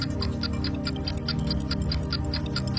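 A 25-second game timer's countdown clock ticks steadily and quickly during a word-association game, about five even ticks per second, over a low sustained musical drone, with no voices.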